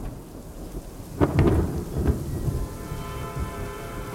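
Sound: thunderstorm with heavy rain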